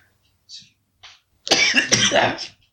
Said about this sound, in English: Cough the other lung out.